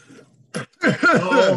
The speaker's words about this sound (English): Oh, yeah. Everybody cough and sore throat. Do it now. Yeah, let's be more professional. Yeah. Everybody get those lungs all hacked up, and here we go.